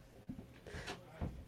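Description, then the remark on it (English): A broken wooden door is opened or closed, with a low knock, a scraping rub and another dull thud over about a second and a half, fairly quiet with no talking. “The door is still broken.”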